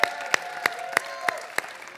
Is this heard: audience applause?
yes